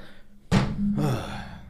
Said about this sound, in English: I'm erasing your strike because I just did it right now. Okay. Just banged on the table, man.